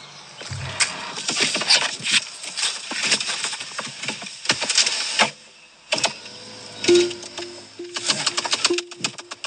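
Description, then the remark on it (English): Creaking, clicking and rapid tapping rattles come in irregular bursts inside a Tesla Model S as someone settles into the seat, with a short low squeaky tone near the end. No one speaks. “This is what you hear when you put your ass down in your S?”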